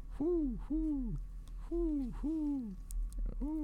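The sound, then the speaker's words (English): A person imitates an owl, after an owl flew by, with a string of five loud hoots, each a rising-then-falling 'hoo', delivered in two quick pairs and a final single over a low steady hum. “Why are you hooing? There's an owl flew by.”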